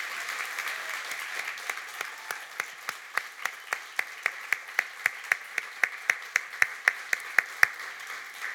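In the morning, the women in a crowd give the men a round of applause, a steady wash of clapping with a sharper, evenly spaced beat of claps cutting through that grows a little louder toward the end. No one speaks.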